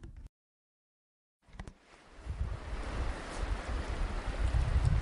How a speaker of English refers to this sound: Do you hear that? It's just me in the water.